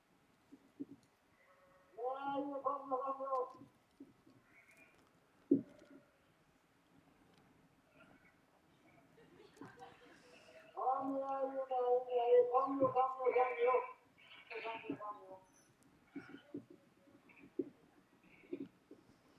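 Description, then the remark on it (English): A shepherd in Norway calls out to a flock of sheep on a misty hillside in two long, wavering, sing-song bursts separated by a quiet pause, with faint bleats and soft outdoor sounds in between. “And then the shepherd starts to call.”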